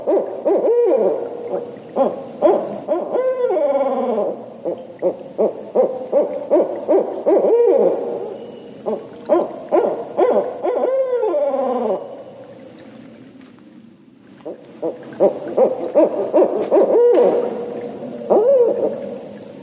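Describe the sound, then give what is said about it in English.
Two pairs of barred owls hoot back and forth in a loud, overlapping chorus of rhythmic calls and swooping, cackling notes, with a brief lull midway before the calling resumes. “And here's what it sounds like when two pairs of owls are calling back and forth.”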